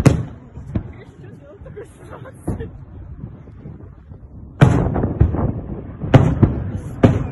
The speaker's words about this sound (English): This is missiles that were just launched into Israel from Lebanon yesterday.